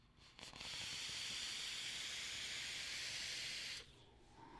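Vape coils on a mech mod fire up with a steady sizzling hiss and fine crackling pops for about three seconds, then cut off abruptly. No one speaks.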